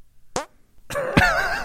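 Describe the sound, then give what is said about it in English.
A short squelchy hand fart pops up, followed after a brief pause by a longer, wetter, buzzing squeeze of air between palms, fairly loud with no talking. “Encore performance of hand farts.”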